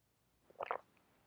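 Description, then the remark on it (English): A soft slurp of someone sipping a drink, a brief wet gurgle lasting under half a second, followed by a faint click as the cup is set down. “Let me take a sip.”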